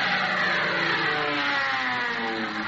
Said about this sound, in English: That's one of them new military planes. One of the HICTIGs. The what? Yeah. HICTIG. Yeah. Here it comes, and there it goes.